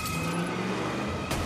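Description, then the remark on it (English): A car engine roars loudly in a steady, continuous drone for a second and a half, with a brief surge of noise near the end and no voices. It comes from a car during a chase and gun battle between cars in a film. “That head-to-head gun car battle is fantastic.”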